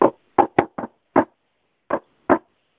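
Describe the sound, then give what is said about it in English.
Seven short, sharp, friendly knocks on a door in a loose rhythmic pattern, a quick cluster followed by a pause and two spaced raps, clear with no voices. “But whenever I knock, it's usually a knock like this. I hope you guys can hear this.”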